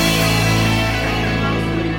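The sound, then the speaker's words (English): A short twangy sound effect rings out loudly, a bright, buzzing tone that holds steady for a couple of seconds with no talking over it. “After this twang, we're going to just shoot the breeze a little bit more.”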